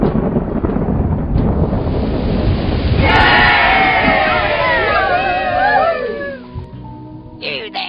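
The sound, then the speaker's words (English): Deep rolling thunder and heavy rain fill the air, a loud steady roar throughout, while a chorus of excited voices rises over it midway and then fades. “The fasting shouldn't be a big task at this point, but we need to seek the Lord Jesus for rain.”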